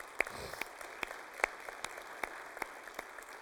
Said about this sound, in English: But give our guys one more round of applause for this.